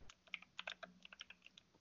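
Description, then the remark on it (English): Rapid, uneven clicking of keys on a loud computer keyboard, a dense burst of sharp keystrokes with no voices. “My super loud ass keyboard.”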